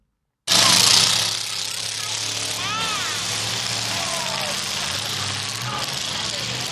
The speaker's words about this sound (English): And as you know, in a car demolition, cars are smashing each other up until they're no longer drivable.